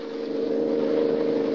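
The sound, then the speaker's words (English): A car engine roars loudly and steadily during a car chase on a road, a continuous low droning hum with a slight rise in intensity, and no one speaking over it. “Who's running this car?”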